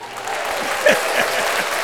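A burst of canned applause plays, a dense steady wash of clapping and crowd noise that holds at an even level for about two seconds with no voices over it.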